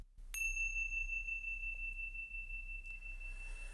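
A single bright meditation chime is struck and rings out with a clear, sustained tone that slowly decays over several seconds, heard alone against a quiet low hum, at the close of a guided meditation.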